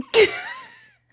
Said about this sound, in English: I love your gasping.